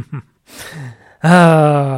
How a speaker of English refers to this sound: excuse me again for when I do this cough. Got something in my throat, of course, when I'm podcasting.